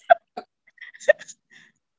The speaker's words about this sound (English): I was trying to clear my throat. Not working right now, but anyway.